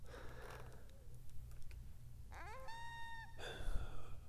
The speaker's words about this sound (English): My guess is coyotes.